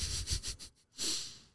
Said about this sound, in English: I think Rollo has a comment. Thanks, Rollo. Beautiful. Some good mic sniffing.